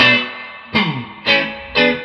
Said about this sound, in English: And it's fun, man. It does the trick. Take the reverb back a little bit